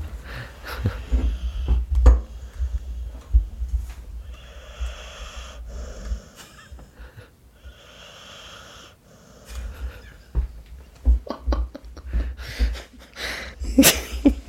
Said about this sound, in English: Oh, that dog. Just snoring. Snoring. Full on.